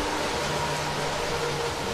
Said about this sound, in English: Is that an exhaust of your car? Oh yes, you can hear my engine, can you?